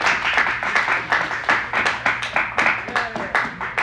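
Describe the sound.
A crowd applauds with steady, dense clapping from many hands, sharp overlapping claps sustained for about four seconds, with some voices mingled in beneath.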